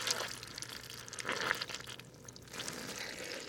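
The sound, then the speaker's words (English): Wet, squelchy water sounds from soggy peat bog ground more than 50 centimetres deep, with a steady trickling hiss and several louder splashy bursts over a few seconds. “We're on a bog. We're standing here, you can see water pretty quickly. Yeah. It's pretty wet.”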